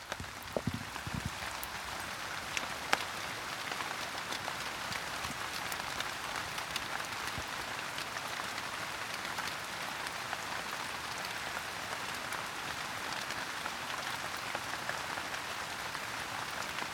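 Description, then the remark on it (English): Heavy rain pours down steadily, a dense, continuous hiss of countless drops striking surfaces, with no voices and no letup for the whole stretch. “It's raining really heavily now, so I'm going to go take the recording machine inside and continue there.”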